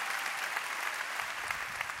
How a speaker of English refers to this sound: Come on. That's all of you. That's all of you loving and serving and giving to other people. Let's give God another round of applause for that. That's awesome. Phenomenal.